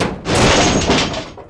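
A single loud slap on the hood of an old, rusty mobile home, followed by a resonant metallic rumble that lingers for more than a second before fading.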